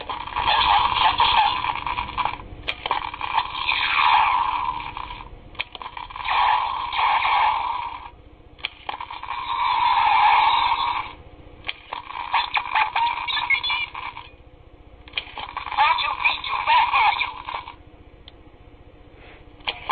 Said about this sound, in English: And Chris Jogulius and Bruce, who the guy we just talked to, made fun of us for not knowing the sounds. The sounds of the transporter, right? Yeah. So we'll include that. I'm actually going to put the sounds in right now.